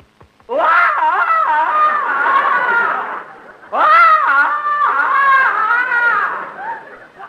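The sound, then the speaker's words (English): A man lets out a Tarzan-style jungle yell: two long, loud, warbling vocal bursts with a brief pause between them, with no other talking. “beat your chest and give the Tarzan yell.”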